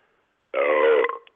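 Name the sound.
a loud burp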